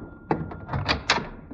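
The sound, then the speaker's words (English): A door is opened to see who is there, with a sharp latch click followed by a few uneven knocks and rattles as it swings, over a faint steady background hum. “I'll see who's at the door.”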